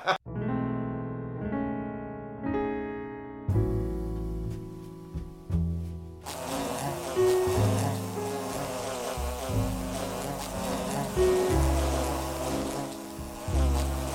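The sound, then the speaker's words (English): A loud, continuous droning buzz like a swarm of bees, wavering in pitch and growing denser and harsher about halfway through, with no voices. “It's just that I've never been on a date with a swarm of bees before.”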